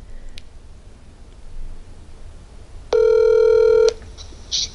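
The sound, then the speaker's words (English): An outgoing live phone call to a mother rings once: a steady, buzzy ringback tone lasting about a second, loud over quiet background hiss, followed by a brief faint blip. “First live call in the pod.”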